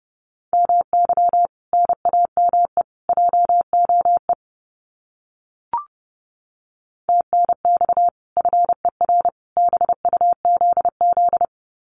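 Fast Morse code at 30 words per minute sending common QSO phrases: a steady mid-pitched tone keyed in quick dots and dashes, two runs of characters split by a short pause with a single click, no voices.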